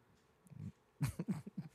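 Dogs barking in a quick, ragged cluster of sharp barks, fairly faint and somewhat distant, following a brief low growl-like sound, with no talking.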